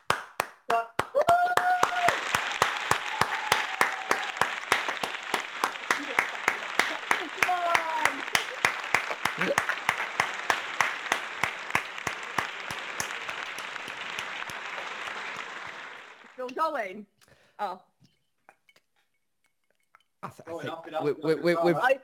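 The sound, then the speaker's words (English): Sustained applause for the NHS, given by people joining in during a radio show: dense and loud clapping with a few cheers for about sixteen seconds, then fading out before a voice starts talking. “I want everyone who's listening at the minute to join us for the next 30 seconds in giving a round of applause for our NHS in this hard time. So do us your best clapping, guys.”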